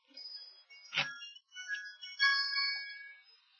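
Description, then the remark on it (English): A phone ringtone plays alone: a string of bright, chime-like electronic notes stepping up and down in a quick melody, interrupted early by a short noisy burst. “Who left their wind chimes out?”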